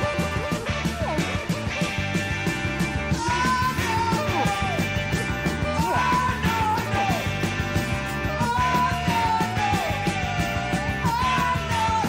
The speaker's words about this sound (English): Something that I thought is very funny about this song is there's this weird sax playing at the end that kind of. It's so weird. It sounds like ducks fucking.